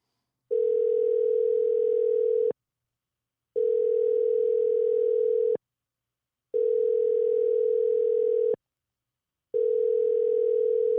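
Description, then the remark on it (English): A phone call rings out unanswered: four long, steady electronic ringback tones about two seconds each, separated by short silences, with no voices. “She probably ain't going to answer my phone call.”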